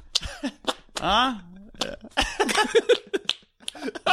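Several squelchy armpit farts made by pumping a hand under the arm, one longer wobbling toot among shorter bursts, with brief voices and laughter-like sounds around them.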